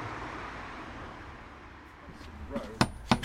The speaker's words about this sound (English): So let's go and knock on the door of another cottage, of Applegarth, and talk a little bit more about the end of the book inside.